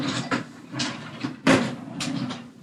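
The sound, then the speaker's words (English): A drawer slides open, followed by a run of knocks, scrapes and clatters as objects inside are shuffled around while someone searches the drawer for a piece of paper, irregular and fairly loud, with no voices. “I think I have it in the drawer.”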